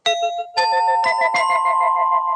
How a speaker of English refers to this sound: Isn't that fantastic? The Jetsons doorbell.